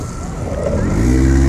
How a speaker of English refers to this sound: There's a red light right here. There's a car turning.